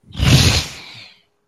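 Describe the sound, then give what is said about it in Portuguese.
A single loud, furious breath of a giant creature echoing through a tunnel, a harsh rumbling exhale with a gritty, airy hiss, swelling quickly and fading out after about a second, alone. “quando todos os olhos focam nele e vocês são recebidos por uma respiração furiosa.”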